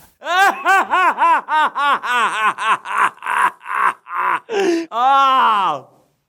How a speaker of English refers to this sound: Here in the room, let me introduce you to the new Joker. He's just screaming.